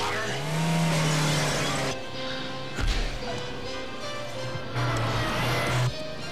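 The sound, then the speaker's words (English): A car engine revs loudly with tires squealing as the car is driven into a house and up the staircase to the first floor, rising and falling in pitch, and a sharp crashing thud breaks in about midway before the engine roars on. “Drive up the staircase to the first floor.”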